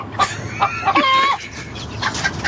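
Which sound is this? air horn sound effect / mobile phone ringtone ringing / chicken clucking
chicken clucking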